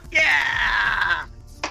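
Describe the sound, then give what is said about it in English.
A singer's loud, sustained, high-pitched vocal scream held for about a second with a full, ringing tone that sags slightly in pitch, then a short breathy burst of voice after a pause. “I scream with my singer lungs.”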